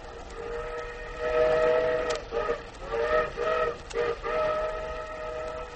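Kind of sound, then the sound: vehicle, train rolling on rails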